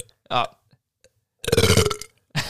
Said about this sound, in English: All right, gentlemen. I'm gonna burp quick, actually. Oh, yep. Let it out. Let it out into the mic. Go ahead.